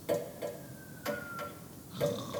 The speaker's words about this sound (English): I think you need to slow down drinking the water.